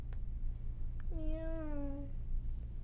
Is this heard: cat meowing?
yes